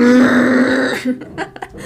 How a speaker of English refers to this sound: There's drilling downstairs. I guess I did not choose the right time to podcast. All I hear is just...